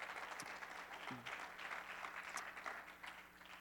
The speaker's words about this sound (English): As you're seated, give him a great, great hand clap of praise. Amen.